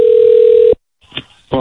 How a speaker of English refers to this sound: So, fuck you, phone, for ringing.